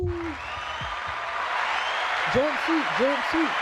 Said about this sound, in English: Where's the crowd cheering? Where's the crowd cheering button?